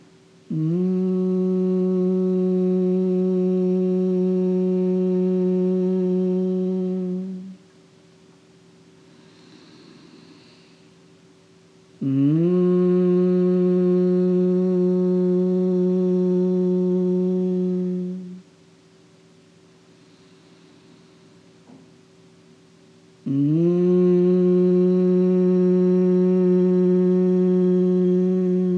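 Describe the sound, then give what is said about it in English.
Three long, steady humming breaths of Bhramari (humming bee breath), each a low buzzing drone lasting several seconds, separated by quiet pauses with soft inhalations. “Now notice, as we now do three Brahmaris, notice how whatever is will change.”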